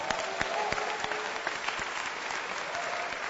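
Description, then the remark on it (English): An audience claps for the Lord steadily, a dense wash of many hands with sharper individual claps popping out, sustained at an even, fairly loud level throughout. “Oh, give the Lord a wonderful clap of him.”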